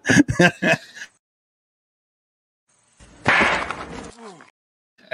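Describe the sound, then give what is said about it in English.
A chair breaks on impact: a short burst of sharp knocks, a pause of silence, then a louder, longer crash of cracking and clattering wood that trails off. “Fucked up a perfectly good chair too.”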